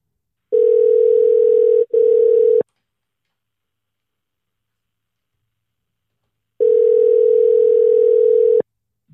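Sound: telephone dial tone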